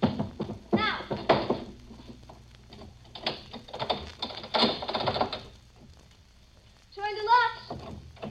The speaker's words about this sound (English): Now, you have to move that chair out of the way so he can get at the locks. I'm doing it.